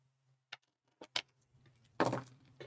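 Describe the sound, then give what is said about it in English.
Six dice clack together in a few sharp clicks, then tumble out in a loud rattling burst that quickly settles, with a faint low hum underneath and no talking. “Let's just roll 6 dice.”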